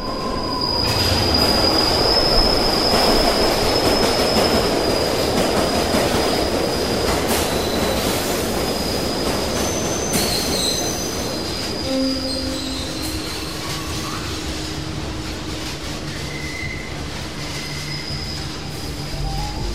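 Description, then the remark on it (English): A train bursts out of a tunnel and roars loudly past, heavy, with shrill metallic wheel squeals ringing over the rumble; after a while the roar eases and scattered high squeals and screeches linger. “Just as the train is about to burst out of the tunnel, he steps up and pushes the other one right in front of the train.”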